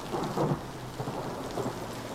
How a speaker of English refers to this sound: He howls into the wind and rain instead. His lament is lost in the noise of the storm.